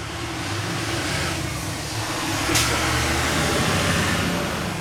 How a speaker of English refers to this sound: It's a large truck for a residential. It really is.